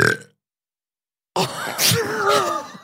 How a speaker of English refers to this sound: Oh my God. That was the biggest burp. That it came from smells deep. Awful.